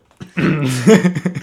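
A loud cough, rough and throaty, drags on for about a second, then trails into a few smaller hacking sputters.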